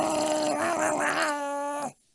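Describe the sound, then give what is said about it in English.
A loud, drawn-out yowling wail, like cats fighting, holds one strained, wavering tone for about two seconds and then cuts off abruptly. No talking is heard. “The cats. The cats are fighting again?”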